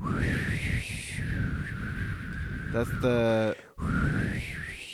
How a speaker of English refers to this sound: That's like a weird bird. Yeah. It's the prairie bird. Oh, what was that? It's a burrowing owl.